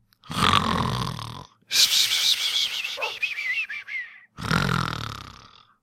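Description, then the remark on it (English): Someone makes loud mock snoring sounds, three rough snores in a row, the middle one trailing off into a high, wavering whistle. No talking. “So let's go to sleep and continue with the good news.”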